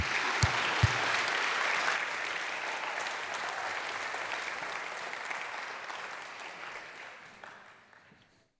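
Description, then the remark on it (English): An audience claps and cheers together in a dense, steady burst of applause that holds strong for several seconds, then gradually thins and fades out. “Let's give it a cheer.”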